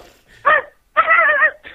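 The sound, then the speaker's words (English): A caller on the phone imitates a dog barking to win seeds, giving a short yelp followed by a longer, drawn-out woof and the start of another, loud with no other talk. “Bark like a dog if you want the seeds.”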